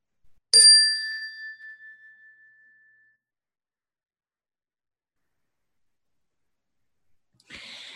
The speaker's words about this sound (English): We'll begin the meditation with the ring of the chime, and we'll end the meditation with the ring of the chime.